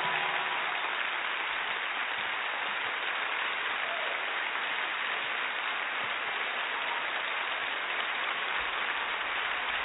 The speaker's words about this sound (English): Clap your hands and give the Lord a praise.